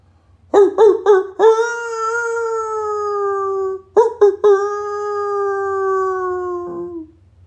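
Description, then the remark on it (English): A wolf howls twice, each long, steady, slightly falling howl opening with a few sharp yips, loud with nothing else around it. “I think you're thinking that was a wolf.”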